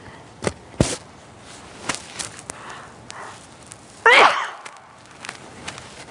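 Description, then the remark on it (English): A single loud sneeze bursts out, preceded by a few faint clicks and rustles, then trails off into near-silence. “I'm going to sneeze here for a moment.”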